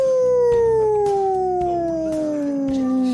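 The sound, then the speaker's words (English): A voice mimics a wolf howl: one long, loud wail held for about three seconds, its pitch gliding slowly downward, with nothing else in the background. “The Wolf. Ow, ow, ow.”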